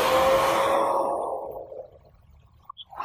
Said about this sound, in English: The only thing I'm gonna do now is use my hairdryer and dry it a little bit, not too much, not totally dry, because I also have the backside to do. So low setting.